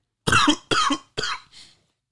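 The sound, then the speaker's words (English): Three harsh coughs come in quick succession, each an abrupt burst, followed by a softer, breathy exhale as the fit trails off. No talking accompanies them. “Man, either talking, snoring, or coughing.”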